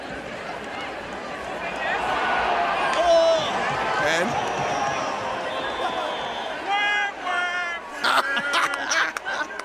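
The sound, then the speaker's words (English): A dense crowd murmurs and then erupts in a collective groan and scattered exclamations as a woman turns down a marriage proposal, with voices rising sharply near the end as the reaction builds over a steady background of chatter. “Listen to the crowd when they realize she's going to say no right here.”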